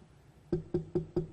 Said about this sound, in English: Knock on your door.